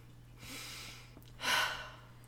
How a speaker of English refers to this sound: So I'm going to sniff this bastard. Oh, man, I don't want to.